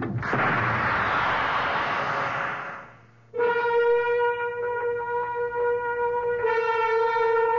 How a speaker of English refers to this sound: They said something about an overload, an explosion.